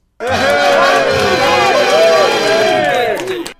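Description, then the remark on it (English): A loud scream sound effect of several overlapping voices, with pitches wavering up and down, held for about three seconds before cutting off sharply. “So for all of that, I pronounce an instinctive scream.”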